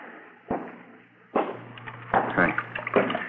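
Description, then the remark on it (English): Water runs steadily from a tap turned on for tooth brushing in a continuous rushing stream, punctuated by a few sharp knocks and clatters and some faint background murmuring. “Turn on the water tap, huh?”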